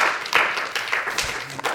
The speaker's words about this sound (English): Somebody say, come on, let's give God a clap offering tonight for his faithfulness.